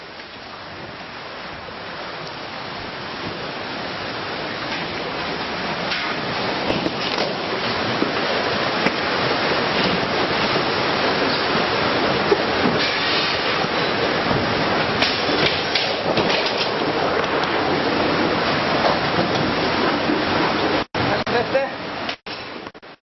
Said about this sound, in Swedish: Svensken som filmar in i restaurangen ställer sig på bord för att komma högre upp samtidigt som lokalen svämmar över med vatten.